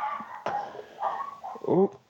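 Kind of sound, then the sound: animal, dogs barking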